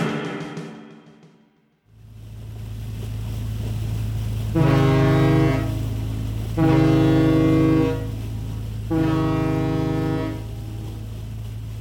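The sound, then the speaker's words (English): Ferry ship ambience in the ferry's cargo bay: a steady, deep engine rumble drones throughout while a loud, low ship's horn sounds three long blasts in slow succession, with no one speaking. “I step out into the ferry's cargo bay and lock my car door”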